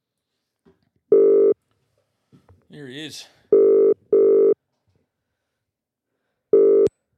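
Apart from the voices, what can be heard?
telephone dialing and ringing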